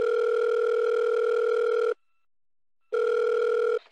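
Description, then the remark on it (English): A telephone ringback tone on an outgoing call to check in on a father: a steady electronic ring of about two seconds, a pause of silence, then the ring starting again, clear with no voices. “Now, before we go, why don't we call my dad back for a second and just check in on him?”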